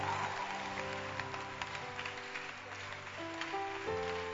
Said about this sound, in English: As you preach, clap your hands for the preaching beauties. Not sleeping beauties. We need preaching beauties.